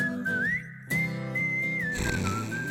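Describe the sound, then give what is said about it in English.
A loud, clear human whistle carries a wavering melody over the music of a theme song, with a brief pause near the middle before the tune resumes and holds steady. “This is really him whistling.”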